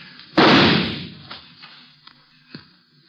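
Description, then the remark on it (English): A single loud gunshot fired in a canyon at a figure partway up the canyon wall cracks out sharply, then rolls away in a long decaying echo, followed by a few faint scattered knocks and thuds in the quiet afterward. “His gunfire gave me a pretty good notion where to aim.”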